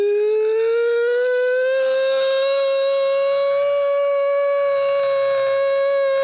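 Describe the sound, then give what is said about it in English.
A voice imitates a whistling tea kettle: one loud, unbroken tone that slowly climbs in pitch and holds steady for about six seconds, bright and shrill with no talking. “I've got a good one and it's called the tea kettle and it goes...”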